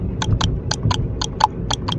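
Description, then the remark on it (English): A sound effect of horse hooves clip-clopping in a steady, paired rhythm, about eight sharp clacks over two seconds, clear over a low rumbling background, like a horse walking on a hard surface. “Oh, there's a horse in the car.”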